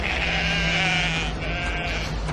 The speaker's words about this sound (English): Is this what they call sheep worrying? What's that? No, the sheep are music lovers.